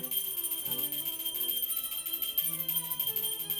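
A hand bell rings rapidly and without pause, its bright metallic tones clanging over and over in an urgent, insistent rhythm, moderately loud, with no voices; it is rung frantically from a ground-floor salon to alert servants.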